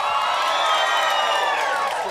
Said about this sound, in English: Thank you very much, because that cheer, of course, we'll be able to put in for all the dead spots.